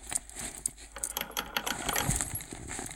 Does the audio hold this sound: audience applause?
no